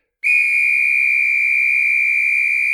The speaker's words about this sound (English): Suzie blew the whistle with every ounce of air she had. The result was an ear-numbing pitch that sent the hunting group into a frenzy.